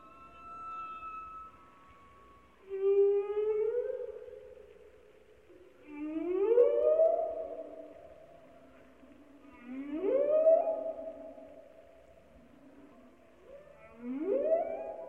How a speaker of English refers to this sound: And then from there, it goes right into the whale song that we merged together, different sounds of the whales, and made a lovely little 45-second song.